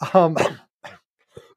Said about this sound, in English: excuse me. Yeah, cough into the microphone. Was that good? Oh, God, no.